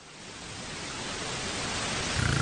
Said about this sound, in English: I have white noise here, but here's white noise. Here's white noise.